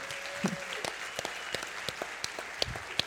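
A crowd applauds steadily, with dense overlapping claps and a few sharper individual claps standing out, moderately loud and continuous throughout.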